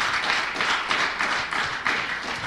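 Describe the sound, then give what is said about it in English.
An audience at Encounter Church claps steadily to give the Lord glory, a dense wash of many hands slapping together with brief swells in intensity, loud and continuous throughout with no voices standing out. “That was a strong clap. I'm complimenting that clap there, right?”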